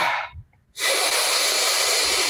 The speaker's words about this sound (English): Then do, after like a minute, long inhales. Then exhale through the mouth and just let everything go.